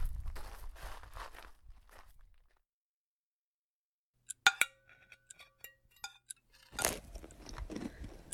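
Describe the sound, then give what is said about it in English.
Someone eating a home-cooked chicken dinner: a few sharp clinks of cutlery on a plate, then soft crunching and chewing bursts, with a rustling stretch at the start and a short silence in between. “This chicken is delicious.”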